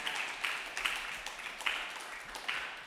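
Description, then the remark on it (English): A crowd at a stand-up comedy showcase at the Comedy Butcher applauds steadily for about three seconds, a dense crackle of many hands clapping at once, with a few sharper claps standing out from the wash. “Give yourselves a round of applause for coming out tonight, huh?”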